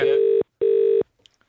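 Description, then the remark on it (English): A telephone call being placed: two steady electronic beeps of equal length, separated by a short pause, clear, then faint clicks and silence. “Well, we could ring her.”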